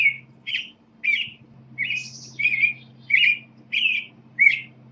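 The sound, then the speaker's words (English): An American robin sings a string of about seven short, clear caroling phrases, each a quick rising-and-falling warble separated by brief pauses, over a faint low steady hum. “If you think of, say, a robin outside your window, it basically says, cheerily, cheer up.”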